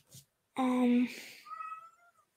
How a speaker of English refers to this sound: What does that cat want?